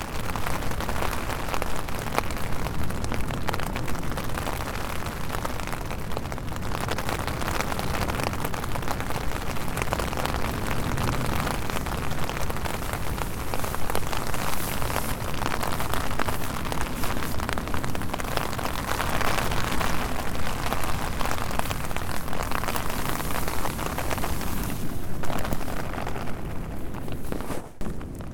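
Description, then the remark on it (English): Steady, heavy rain patters and drums on a tent while camping, a dense continuous hiss with occasional louder surges and no voices throughout. “The tent is our place when we are traveling, and it makes us feel safe, even if strong winds or rain are outside.”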